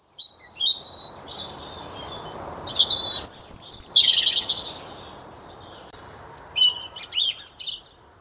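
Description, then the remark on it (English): A robin sings its thin, watery winter song: short high warbling phrases with pauses between them, clear over a faint hiss of background noise. “The weak, watery winter song of the wobbin.”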